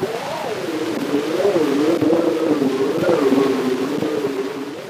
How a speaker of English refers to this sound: The earliest ambient noises that we could have recordings of are probably the sounds of the Metropolitan Elevated Railway in New York City.